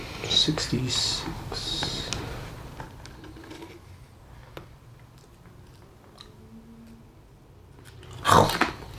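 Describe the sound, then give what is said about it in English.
Close-up munching and chewing on food, with crunchy, irregular bites clustered early on, a quieter stretch of soft mouth sounds, then a louder crunchy burst near the end. “Yes, munch away.”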